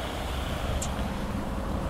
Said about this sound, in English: See what I mean? I'm now in the park, but you hear so much traffic, so this is not a suitable place to record.